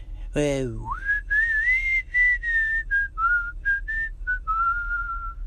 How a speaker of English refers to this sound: As far as whistling, I'm not the best at that.